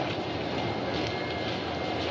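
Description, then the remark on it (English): A steady, dense rumble and hiss of a train at a station platform, holding an even loudness throughout with no voices; in a film scene, Virgil Tibbs boards the train home from the small southern town of Sparta, Mississippi. “After the crime is solved, Gillespie walks with Tibbs as he boards a train home.”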